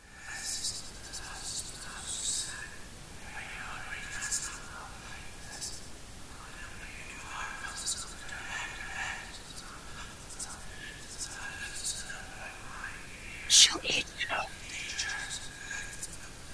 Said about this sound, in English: Hez just hears this like fucking whispering and like the static and the static noise too.